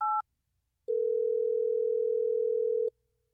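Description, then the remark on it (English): A brief two-tone phone beep is followed by a pause, then a steady, loud telephone dial tone holds for about two seconds before cutting off, as the Hot 101.5 radio station in Tampa Bay places a call, with no voices present. “Are you ready for us to get Nessa on the phone?”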